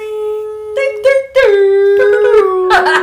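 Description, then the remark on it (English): A person vocally imitates Godzilla's roar: one loud, sustained wailing cry lasting about three seconds, broken by rough, raspy bursts that swell toward the end. “We need a fucking soundboard so bad, but I kind of like our noises. That's Godzilla.”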